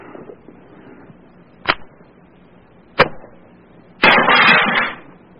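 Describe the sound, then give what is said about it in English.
A tear gas canister being fired: two sharp, loud pops a second or so apart, then a harsh burst of hissing that lasts under a second, with no voices. “Let's give him the tear gas now.”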